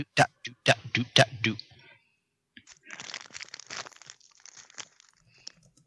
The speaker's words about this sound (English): I hear some crunching. Are you guys eating something? I wish I was. I'm eating them. I'm eating Luke and Han and Chewie.